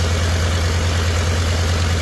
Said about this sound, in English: It's a radial, right? Radial engine? I think. About 14 of them?